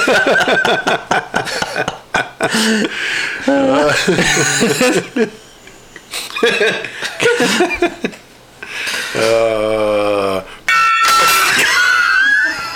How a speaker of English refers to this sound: You have to be more gentle with the gong